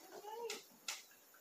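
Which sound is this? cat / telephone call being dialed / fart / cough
cat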